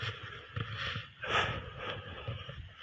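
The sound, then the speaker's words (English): Heavy, rapid breathing of a person walking very fast uphill, a steady run of huffing breaths with one louder, forceful exhale in the middle. No one speaks. “I'm walking uphill at this point, so if you hear me breathing a little heavier, I'm walking very fast.”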